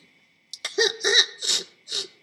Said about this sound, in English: I see you're still sniffling. Please, try not to cry. It's not a good thing to cry.